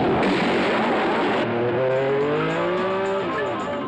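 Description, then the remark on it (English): Loud race car engines roar past in quick succession at the 24 Hours of Le Mans endurance race, high-revving whines rising and then dropping in pitch as they sweep by, over a constant rush of engine noise. “And so, ladies and gentlemen, welcome to the most famous motor car race in the world, the 38th running of the Grand Prix of Endurance and Efficiency, the 24 Hours of Le Mans.”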